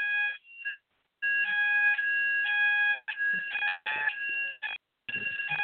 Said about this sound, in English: No, I think it's a fire alarm. Mm-hmm. Really sorry, we think there's a fire alarm test. Yeah. So we don't think we're about to be incinerated.